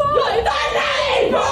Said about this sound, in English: British women really can screech, can't they? Holy fuck. You've got some pipes on them.